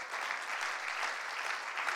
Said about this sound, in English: Can you give a wonderful hand clap to Brother Hippolyte?